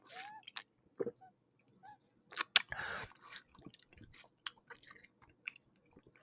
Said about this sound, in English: I have my water. Actually, let me drink water.